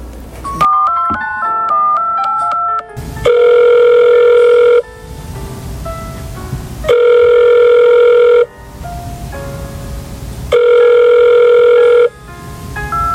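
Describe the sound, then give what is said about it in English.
A quick run of melodic electronic beeps gives way to a telephone ringing as a call is placed to the police chief: three long, loud, buzzy tones separated by steady pauses, with no one speaking. “I will call the police chief right now.”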